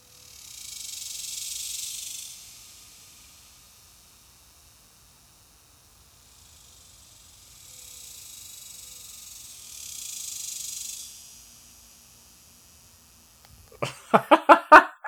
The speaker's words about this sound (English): So to make it up to everybody, oh no, I ran out and recorded some cicadas, and we can listen to them now.